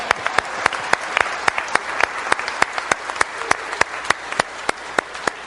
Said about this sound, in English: And then if you're really sincere, you have to give the Lord a hand clap of praise. Amen.